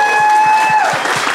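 Sustained audience applause, a dense steady patter of clapping, with a thin high whistling tone held over it that slides downward partway through.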